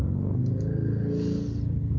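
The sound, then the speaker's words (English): A car passes by outside, its steady low engine rumble swelling slightly as it goes through, muffled, with no voices. “You had a nice car just go through.”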